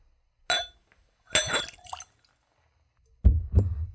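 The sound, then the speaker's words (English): Whiskey is poured from a bottle into a clean Glencairn nosing glass in a few short splashing bursts with a bright clink, then a heavier splattering pour that spills about a quarter ounce, with no talking. “So let's go for a pour.”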